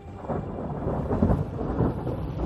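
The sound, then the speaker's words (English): Thunder rumbles low and continuous for a couple of seconds, a dense, rolling roar swelling slightly in the middle, with a faint hiss of rain over it and no voices, as thunderclouds suddenly roll in. “I glared out the window and saw thunderclouds suddenly rolling in.”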